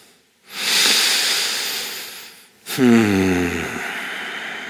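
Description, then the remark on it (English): A long, airy inhale lasting about two seconds, followed by a slow, loud exhale carrying a low voiced tone that slides downward as it fades, with no talking. “Now, the ninjas out there, the emotional ninjas, can feel it, and they just start breathing.”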